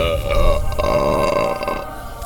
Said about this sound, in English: Number two, was that a belch?